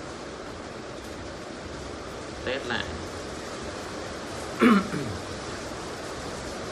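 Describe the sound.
Heavy rain pours down outside in a steady, dense hiss that fills the whole recording, with a man briefly speaking over it partway through.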